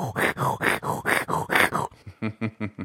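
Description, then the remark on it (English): A lyrebird mimics a saw rasping through wood in the woods: about seven rough, breathy back-and-forth strokes, then five softer, more tonal pulses mimicking the saw's echo in the valley. “I believe that was the saw sound effect.”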